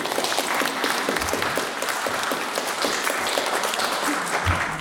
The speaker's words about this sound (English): Well, thank you very much for your big round of applause